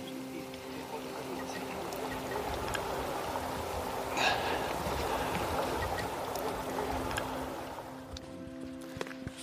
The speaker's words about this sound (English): It's so quiet, apart from the lapping of the water on the lake's edge and the trickling of a small stream nearby.